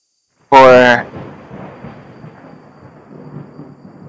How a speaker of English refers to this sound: Did we hear lightning? Yeah, you hear a small trickle of rain just outside.